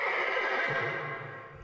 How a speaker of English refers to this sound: That was when they heard the neighing of a horse behind them.